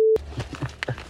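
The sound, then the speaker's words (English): A single loud, steady electronic beep from a microwave oven set for 4 minutes to heat food cuts off abruptly, followed by a series of soft, irregular thumps and clatter. “Although, let me go microwave his food.”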